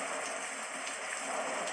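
Steady rain falls continuously, a dense even hiss of drops spread across a wide range, moderately loud, with no voices or other distinct sounds.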